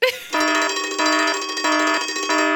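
alarm sound effect

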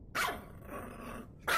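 dog barking

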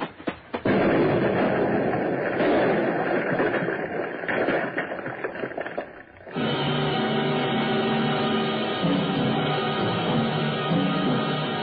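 car bomb explosion

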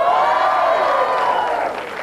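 studio audience applauding

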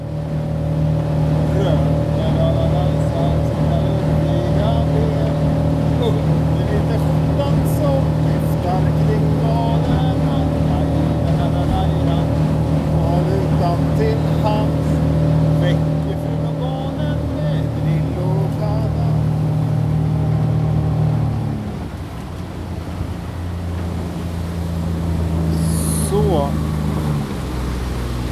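motorboat engine

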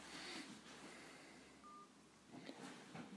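telephone dialing tones

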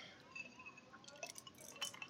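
drinking

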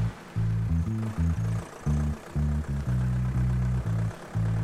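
truck engine idling

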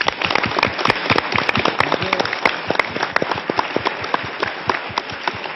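studio audience applause

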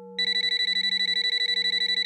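telephone ringing

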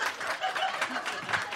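polite audience applause

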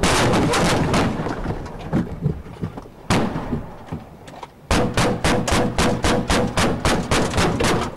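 gunfire

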